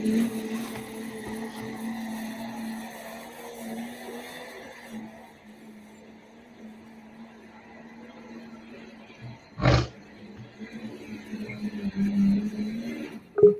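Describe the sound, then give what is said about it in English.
A red pulling tractor with new parts roars in a steady, low droning growl that eases off midway, then builds again, broken by a sharp bang near the end before a final loud surge. “Wow, that red tractor, boy, I'll tell you, he's got some new parts under there.”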